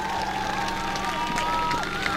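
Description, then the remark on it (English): A race crowd cheers as driver Doug Glessner climbs out of his car after his sixth win of the year, in a steady, dense roar that holds level throughout, with a faint sustained hum running beneath it and no clear voices standing out. “He can hear you, make some noise.”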